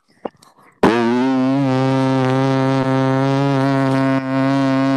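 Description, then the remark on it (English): A voice mimics a running microwave oven with a steady, buzzy hummed drone held for about four seconds. A few faint short noises come before it, and the tone briefly dips twice. “Yeah, do a microwave.”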